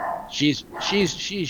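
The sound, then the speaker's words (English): Joey's dog barks three times in quick succession, fairly loud, each bark a short, rising-then-falling yelp over a hissy background. “Oh, Joey has a dog. This is what I'm dealing with.”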